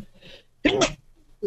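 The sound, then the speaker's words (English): A single sharp sneeze bursts out loudly, a short explosive blast lasting under half a second, with faint breathing and quiet background noise around it. “Bless you.”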